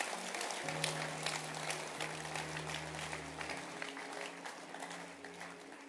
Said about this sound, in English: Can you clap your hands? Is it possible to clap your hands?